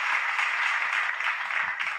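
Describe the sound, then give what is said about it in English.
An audience applauds a guest steadily for about two seconds, a dense, even wash of many hands clapping at once at a fairly strong level, with no talking over it. “Please clap for our guest tonight.”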